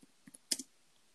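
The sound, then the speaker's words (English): A short burst of typing on a computer keyboard: four crisp keystroke clicks, two light taps followed by two louder ones, against a quiet background with no voices. “Ignore my typing, sorry.”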